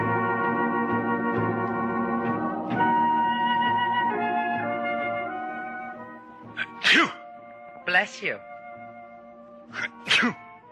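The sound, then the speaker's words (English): A voice talks briefly before a run of sharp sneezes from someone with a cold, about five or six, coming in quick pairs with short pauses between them. “Bless you.”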